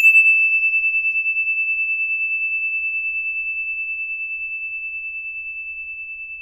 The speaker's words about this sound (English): Here comes the bell.